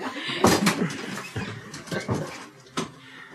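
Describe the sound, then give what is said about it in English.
A door is pushed shut with a series of clunks and rattles, followed by a final sharp thud near the end, with no voices. “Let's close the door.”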